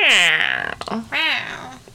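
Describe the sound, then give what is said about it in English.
A person's voice imitates a Minecraft villager with two drawn-out, nasal, whiny calls, the first sliding downward and the second rising then falling, loud, with a brief pause between. “I was trying to do a Minecraft villager.”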